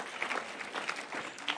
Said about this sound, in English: That'd be a good time for a hand clap right there.